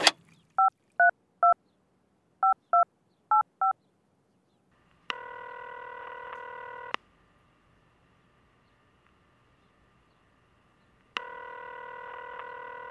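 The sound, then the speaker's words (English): In a kitchen early in the morning, a quick series of touch-tone beeps dials a phone number, about ten short tones in small groups, followed by two long ringback tones separated by a pause of silence. “He picked up the phone and dialed a number as he sipped his coffee.”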